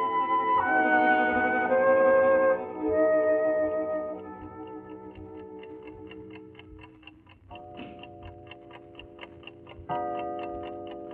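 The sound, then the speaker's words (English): A clock ticks steadily after a ringing chime fades, then strikes two o'clock with two resonant bell-like tones a couple of seconds apart, the ticking continuing beneath them. “Two o'clock.”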